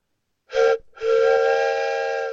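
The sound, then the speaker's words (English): An imitated train whistle: a short loud toot, a brief break, then a long sustained reedy blast with rich harmonics, alone, with no talking. “I love that you just did the train whistle.”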